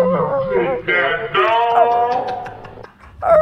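A dog whimpers and yips in a run of high, wavering whines that slide up and down in pitch, loud, with short sharp cries between the longer whimpers.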